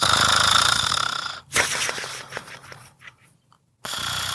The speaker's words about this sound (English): they saw their tiny friend tossing and turning in his bed, his little snores resonating unusually loud.